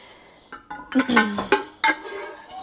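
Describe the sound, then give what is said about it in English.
A utensil scrapes and clinks against the inside of a metal cooking pot, getting the last bits of cooked sauce out, with several quick scraping strokes and sharp metallic knocks, fairly loud, with no talking. “I've got 2 different pots of sauce that I cooked, and I am getting all of the last little bits of sauce out of one of these pots before I switch over to the other pot.”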